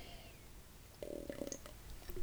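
A short gurgling sip lasting about half a second, a low liquid slurp or gulp over a quiet background, followed by a few faint clicks and a soft swallow.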